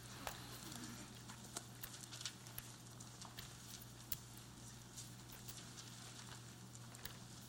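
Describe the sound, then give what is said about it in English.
Many Bible pages turning at once as readers flip to Matthew chapter 10: a steady, irregular crackle of soft paper rustles and flicks with occasional sharper snaps, over a low constant hum, with no talking. “Wow, it is nice to hear the pages turning.”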